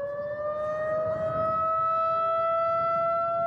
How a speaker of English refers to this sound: Now, I don't know if that's a bomb warning, a tornado warning, a siren. I don't know.